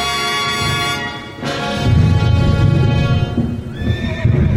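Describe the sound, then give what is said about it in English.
A stout horse gives a long, loud neigh, then hooves clip-clop in a quick, steady rhythm while a second whinny rises near the end. No one speaks. “Seriously, brother, I mean, he can have this horse. I mean, he's stout.”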